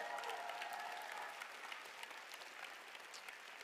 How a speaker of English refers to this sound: And if you're ready for it, church, clap your hands and give God praise. Come on. No, if you're ready, give God a good hand clap of praise.